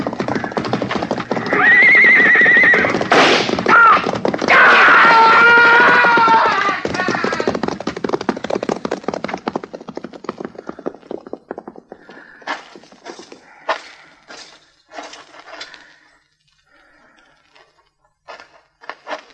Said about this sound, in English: Look, he's trying to ride the horse out.